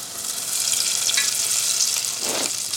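Tempura-battered cauliflower florets frying in hot oil in a pot: a steady, dense crackling sizzle, swelling briefly near the end as another floret slips into the oil. No one speaks.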